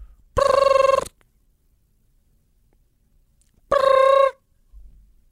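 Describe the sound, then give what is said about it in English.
A phone call's ringing tone sounds twice, each a bright, buzzy burst under a second long, separated by a pause of nearly three seconds, with no voices in between. “Wow. It's ringing.”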